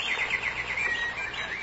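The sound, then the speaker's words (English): Small birds chirp and twitter continuously in high, bright trills, a lively chorus of overlapping songs at moderate volume with no voices present. “The little birds were frightened, but when she was dead, they began to sing again.”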